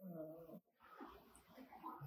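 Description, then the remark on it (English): A dog gives a short, rumbling snore with a groaning, nasal tone, fairly loud, lasting about half a second before someone begins talking. “That was a Walker snore”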